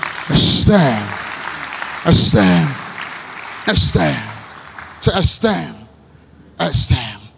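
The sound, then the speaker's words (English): An audience claps in a steady, dense wash of noise, while a loud voice calls out in short, repeated bursts over it. The clapping thins out briefly near the end. “You're clapping.”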